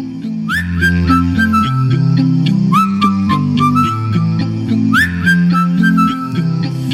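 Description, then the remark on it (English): A bright whistle swoops upward and holds three times at an even pace, loud, over a bed of sustained, harmonized singing voices with no instruments, as an a cappella group performs a song. “You blow that whistle, you say cheery whistle, I say bum.”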